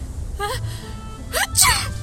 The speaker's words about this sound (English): See? You're already sneezing.